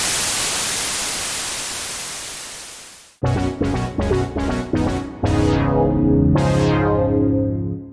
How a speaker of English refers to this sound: And it cuts to static.